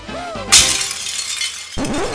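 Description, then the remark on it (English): A brand-new hammer strikes something breakable with one loud, sharp smash, followed by a second of scattering, rattling debris before a voice begins speaking. “This is a brand new hammer, so I'm really glad to use it.”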